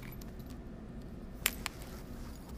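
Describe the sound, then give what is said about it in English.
Keys jingle briefly as someone gets their keys to leave early, a couple of bright metallic clinks over a steady low rumble, like a car engine idling or road noise in the background. “Let me get my keys.”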